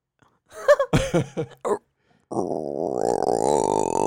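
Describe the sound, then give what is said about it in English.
A person makes a few short, rough grunting bursts, then a sustained low, guttural croak with a rattling, pulsing texture, sounding much like a toad's croak done by a human voice, in a contest over who can make the lower sound. “I sound like a croaking toad.”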